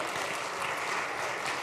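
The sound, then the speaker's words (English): A crowd claps steadily, a dense wash of many hands applauding at once, sustained through the whole moment with no voices standing out. “So just a round of applause for a wonderful boyfriend of my daughter”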